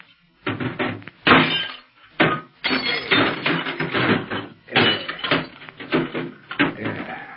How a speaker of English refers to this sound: Yeah, to make sure nobody else hears, I'm going to wreck this short wave set.